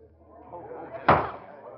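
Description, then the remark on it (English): A single solid clunk of a courtroom's jury room door opening lands about midway, louder than everything else, over a low murmur and faint voices that fades slowly afterward. “It seems an age before the door to the jury room opens, and the 12 most important people in the world take their places in the box.”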